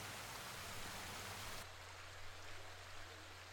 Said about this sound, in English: You can hear the sounds of the water. And you can feel the tension and stress drifting away down this river as each ripple of water produces another.